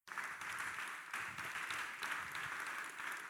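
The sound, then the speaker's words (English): An audience claps steadily throughout, a dense, continuous patter of many hands at a fairly loud, even level with no voices rising above it. “Look at the way you are clapping.”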